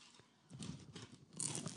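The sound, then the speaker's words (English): A crisp bite into a deep-fried peach mango pie, followed by a few crackly crunches as it is chewed, with a sharper crackle toward the end; no one speaks. “Oh, nice and crunchy.”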